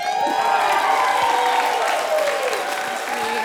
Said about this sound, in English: Now, keep that applause going, because we have the next very incredible, very amazing